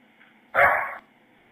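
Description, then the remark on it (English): A female German Shepherd lets out one sharp, half-second bark, fairly loud, with quiet background before and after and no one speaking. “Yeah, I have a female dog.”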